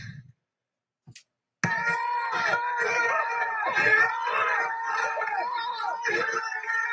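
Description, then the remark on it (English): A crowd of protesters shouts outside the Harvard Club hall where Hillary Clinton is giving a speech, calling her a murderer and chanting lock her up. After a short quiet start, a loud, continuous mass of overlapping raised voices and chants bursts in and keeps going without a break. “This is what the crowd reaction, though, was outside of the hall where she was.”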